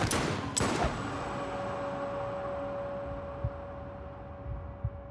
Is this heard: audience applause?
no